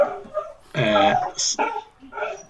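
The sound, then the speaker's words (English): A dog barks a few times in quick, irregular succession, one loud bark followed by shorter yelps, with faint voices talking around them. “Somebody's dog's barking.”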